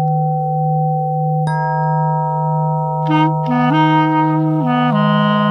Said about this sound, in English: The chimes and tuning forks you will hear come from a sound therapy system called Accutonics. These precision-made tools are created using mathematical tunings from Kepler's Music of the Spheres, the planets, and NASA listening devices.